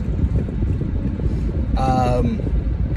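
A motorcycle engine rumbles steadily outside, a low droning roar that fills the whole stretch, with a brief higher whining rev partway through.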